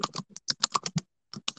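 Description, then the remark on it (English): Quick bursts of computer keyboard typing while writing an application to get a dog, about a dozen crisp keystrokes in an uneven rhythm with a brief pause before a few more taps, heard alone without any talking. “Sorry, one second. I'm writing an application to try and get a dog.”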